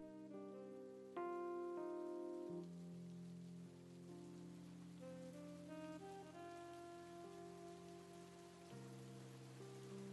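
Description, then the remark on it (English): A steady hiss of falling rain runs underneath slow, sustained musical chords that shift pitch every few seconds, with no voices present. “When they called me and told me Hank, the world's greatest, had been murdered, it was raining.”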